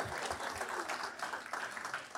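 An audience breaks into steady applause, a dense wash of many hands clapping at once with no voices standing out, holding at an even level throughout.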